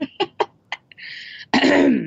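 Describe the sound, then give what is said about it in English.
An exaggerated, theatrical throat clearing by someone about to begin reading aloud: a few short raspy hacks, a breathy pause, then one loud, drawn-out guttural rasp to finish. No one speaks. “So whenever you're ready, please clear your throat dramatically and begin.”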